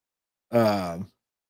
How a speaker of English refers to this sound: I got the yawns, bro. What the fuck I got the yawns for? Yawning is a sign of.